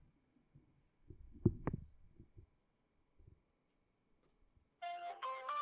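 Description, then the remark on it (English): A phone call fails to connect: after some faint handling clicks and thumps, three loud rising electronic tones play near the end, the intercept signal of an unreachable number whose phone is either switched off or out of service. “his phone's either off or he's out of service.”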